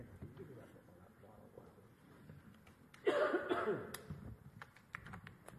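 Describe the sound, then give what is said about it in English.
A loud burst of harsh coughing erupts partway through, lasting under a second, against a quiet background with faint low murmur before and after. “This is not a COVID cough. This is an allergy cough, I think.”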